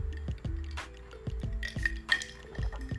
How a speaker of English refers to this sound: Like this glass of water here.